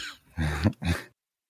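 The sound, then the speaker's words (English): Two quick, rough coughs, each a short throaty burst with a brief gap between them, then silence. No one is speaking. “See, make you cough.”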